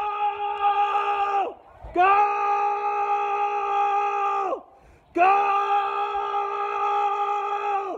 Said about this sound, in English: if you really want to look forward to getting phone calls, then you need a ringtone that sounds like an insane Croatian man who's middle-aged losing his shit during the World Cup.